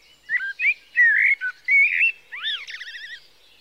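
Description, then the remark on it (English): A bird sings deep in the woods, a varied phrase of clear whistled notes, slurred rising and falling tones, then ends in quick warbling trills. It sounds alone, with no talking. “I would take long walks in the early morning and again at dusk, and I became captivated by this singer that I kept hearing deep in the woods, and I could never find the bird, but I couldn't get enough of the song.”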